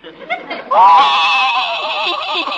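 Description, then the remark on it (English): A horse named Silver Moon whinnying in a wailing, sobbing way as if crying, one long quavering cry that rises sharply and then wavers on for about two seconds, loud, likely voiced by a person imitating it, in the radio story Honest Harold. “I can't stand to see a horse cry.”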